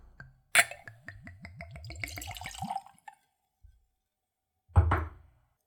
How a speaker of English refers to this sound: And now for a pour.